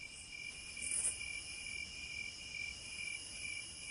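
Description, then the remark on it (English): Crickets chirp steadily in a quiet night setting, a continuous high-pitched trilling with faint pulsing that stays even throughout, with no voices or other sounds. “The night was calm with only the sound of crickets.”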